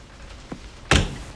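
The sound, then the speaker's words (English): An elevator is stopped mid-ride and jolts to a halt: a soft knock, then a loud, heavy mechanical clunk that rings briefly and fades. Sudden, with no voices. “Uh-oh, he stopped the elevator.”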